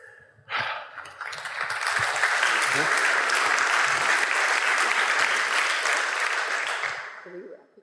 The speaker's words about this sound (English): Okay, so this awkwardness about clapping is really awkward. So let's take some breath of gratitude for each of these beautiful humans and their grit and their path. Because clapping, we want to clap